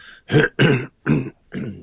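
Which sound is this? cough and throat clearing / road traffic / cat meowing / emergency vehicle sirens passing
cough and throat clearing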